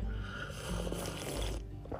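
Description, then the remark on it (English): A long, breathy slurp of hot coffee at the Strader Hotel in Durango, Colorado, lasting over a second before trailing off, with no talking. “So coffee cheers from the Strader Hotel, live on location in Durango, Colorado, or as what I would like to call my Rodeo Durango.”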